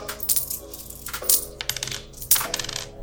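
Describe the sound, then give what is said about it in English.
Several metallic clinks as five coins are stacked one on top of another, a handful of bright taps spaced irregularly over a few seconds, with no talking. “Yeah, so let's get away with 5 coins at first, right? All right, here we go. Stacking 5.”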